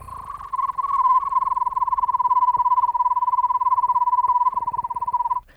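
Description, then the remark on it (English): A person whistles a steady, rapid trill on one sustained mid-high pitch, imitating an owl's tremolo call, holding it for about five seconds without any talking. “I'll try to do the trill.”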